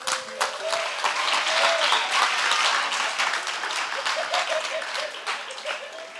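An audience applauds a pastor steadily for about six seconds, a dense, bright wash of many hands clapping that swells early and then slowly tapers, with a few faint voices and tones underneath.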